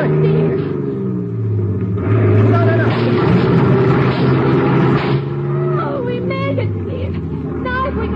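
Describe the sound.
A truck engine roars loudly, its deep rumble swelling as it revs and accelerates steadily over several seconds to crash a barricade on a bridge, with voices shouting over the noise.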